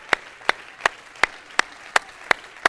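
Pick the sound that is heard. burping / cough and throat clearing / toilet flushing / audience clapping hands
audience clapping hands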